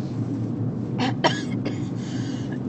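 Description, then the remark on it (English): A few short, harsh coughs burst out in quick succession, the second the sharpest, over a steady low rumble of background noise. “Now it's my turn to cough.”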